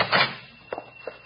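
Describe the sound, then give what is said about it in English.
A shop door opens: a brief rattling whoosh at first, then a few sharp clicks of the latch and hinges at uneven intervals. Fairly quiet overall, with no voices. “All right, Seamus, stand back. I'll open the door.”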